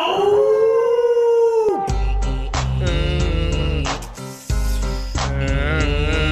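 A wolf lets out one long, sustained howl that holds steady and then slides down. It is followed by a loud, rhythmic stretch of music with a heavy beat.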